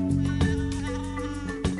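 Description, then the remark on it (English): Sheep-like bleating with a shaky, wavering pitch at the start of a song, with marimbas playing over it in a dense musical backing, sounding loud alongside sharp rhythmic hits, with no one talking. “I swear to God, there's buying sheep on ….”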